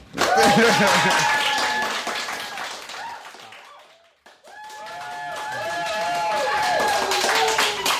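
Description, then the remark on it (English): A crowd applauds, dense crackling clapping that fades briefly midway, then swells back up and carries on steadily, with voices sounding over it. “You know, I like the applause.”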